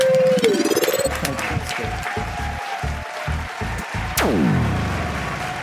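An audience claps steadily for several seconds, a dense wash of hand claps blended with swooping musical tones and a sharp falling whoosh near the end.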